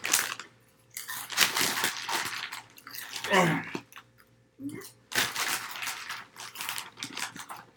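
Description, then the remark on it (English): Drinking of water, with repeated crunchy, crinkling bursts and wet slurping, gulping noises in an irregular rhythm, plus brief vocal sounds between sips. “We're going to drink water right now.”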